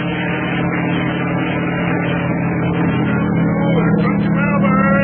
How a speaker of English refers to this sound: And that helicopter is bringing its mail from the United States.